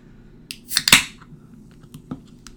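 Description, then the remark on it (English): A can of margarita cracks open with a sharp metallic click and a brief burst of fizzing hiss, followed by a few faint, scattered clicks against a low background hum. “No, I was opening the can.”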